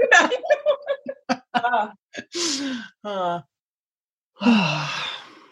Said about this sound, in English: So we are both experiencing several yawns, so we haven't gotten started yet. And there's one coming up. Oh my God.